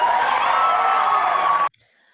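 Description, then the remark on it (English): A crowd cheers loudly and steadily, a dense roar of many voices with higher yells streaking through, which cuts off abruptly after under two seconds, leaving near silence. “Who's cheering her on?”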